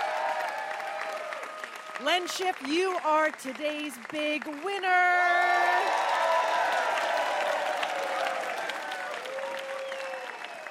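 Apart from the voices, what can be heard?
audience applause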